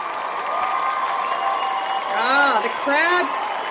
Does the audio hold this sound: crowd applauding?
yes